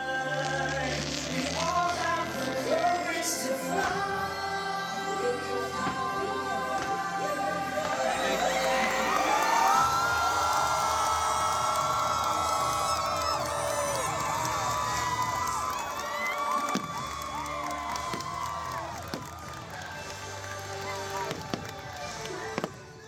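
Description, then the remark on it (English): A large crowd cheers and shouts excitedly as Tinker Bell flies during the Happily Ever After fireworks show: a swelling roar of many voices with high-pitched screams rising over it, sustained throughout, with scattered pops and bangs from fireworks beginning. “But you could say that the crowd was excited to hear Tink fly.”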